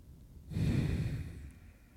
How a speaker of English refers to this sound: You're breathing into yours. Oh, am I? Yeah.